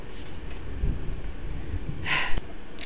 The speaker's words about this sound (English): If y'all hear thunder in the background, please excuse it. We have a thunderstorm going on right now, and we could get a nasty storm.